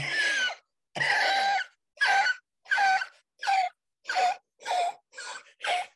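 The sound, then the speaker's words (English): A voice imitates an old woman's wheezing laugh: nine raspy, breathy bursts in a steady rhythm, the first two longer, the rest short and strained, each with a squeaky, pinched edge. “And I hear this kind of wheezing and laughing.”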